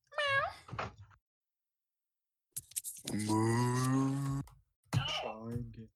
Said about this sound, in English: Let's play the no talking game. Meow. You lose, you stupid fucking cat idiot.